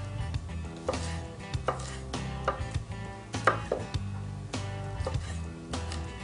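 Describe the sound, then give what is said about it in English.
A knife mincing smashed garlic cloves on a cutting board, run right through the garlic: sharp, irregular wooden knocks every half second or so, standing out over steady background music. “All right, now when cutting garlic, we're gonna mince through, so you wanna smash it with the knife into the board.”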